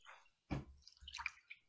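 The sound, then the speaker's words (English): Water splashing as someone rinses their face with room-temperature sink water after washing it: a sharp splash, then a few softer sloshing, dripping sounds, fairly quiet, with no talking. “So we wash our face, and then we rinse.”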